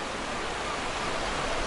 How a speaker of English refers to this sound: And then I get in the water for about 15 minutes. Listen to the water. Get wet.